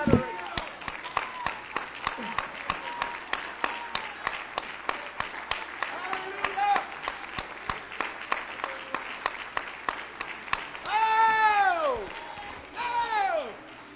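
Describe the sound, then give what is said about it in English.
An audience at McCormick's Creek Church, standing, claps their hands, with sharp, somewhat uneven claps continuing steadily for the whole stretch. Voices talk and call out underneath, rising into loud whoops and shouts toward the end. “Let's stand to our feet and give Him a hand clap.”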